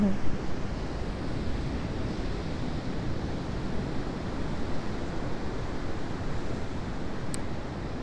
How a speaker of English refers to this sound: Except that as soon as I say that, I realize that the sea has many surfers in it. I'm going to turn myself so I can watch them. And there are people walking dogs and standing, watching the waves. Some of them jumping in to the sea.